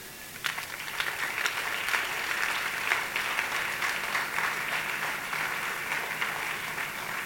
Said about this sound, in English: Slap those hands and clap and give God some praise.